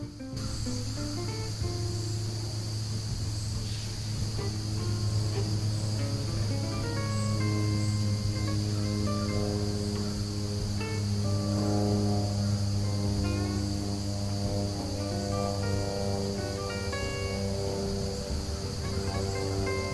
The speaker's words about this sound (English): hang on, airplane.